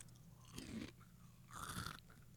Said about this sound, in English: No, I was trying to chew with my mouth open. Oh, that way you could hear the crunch.